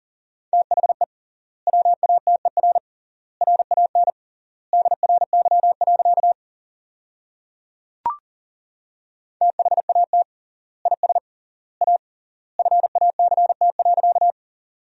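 Fast Morse code at 40 words per minute with 3x word spacing, sending sentences from the top 500 words, in a steady mid-pitched beep, rapid dots and dashes grouped into words with longer pauses between them, plus a single sharp click midway; no voices.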